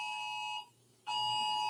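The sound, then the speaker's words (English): A tornado warning siren sounding during an active tornado warning blares as a steady, shrill electronic tone, cutting out briefly before sounding again at full loudness, with no voices. “You guys hear that siren, folks? I'm in the midst of a tornado warning here.”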